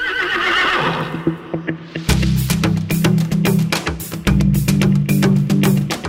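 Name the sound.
horse neighing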